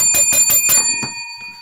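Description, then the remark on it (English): A bicycle bell rings rapidly about five times in a quick bright trill, loud, then a faint final ding as the metallic tone lingers and fades. “Got to ring the podcast bell when you say galvanised.”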